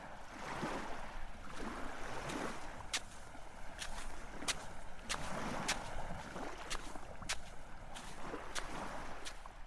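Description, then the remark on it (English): Waves roll in steadily against a rocky shore on the Scottish west coast, each surge washing up with sharp splashes and clacks between the swells as crystal clear water laps around the rocks. No one speaks. “I sit down in a big piece of driftwood and watch the waves roll onto the shore.”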